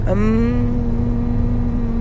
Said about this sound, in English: We are going to wake up and we are going to start our day on a high vibration, and we're going to just ohm it out. Just vibrate your lips.